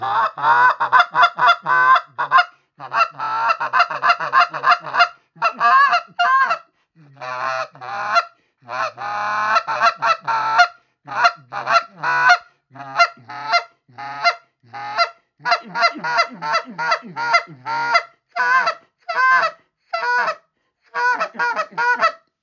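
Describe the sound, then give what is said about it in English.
A long run of goose honks during a goose hunt, some single and some in quick clustered bursts, loud with short gaps between. The calls are rhythmic and soft-edged, with no talking. “I'm not running 90 miles an hour because I'm not trying to pull other geese, you know, because you don't want to keep, well, these ones are in there.”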